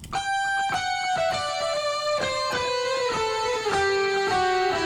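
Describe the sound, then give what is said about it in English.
An electric guitar with a thick, effects-laden tone plays a slow melody of sustained notes on a hard rock Christmas album recording, the line stepping gradually downward. It is loud throughout, with no voices. “This one looks like it's coming to us from a guitarist we know very, very well.”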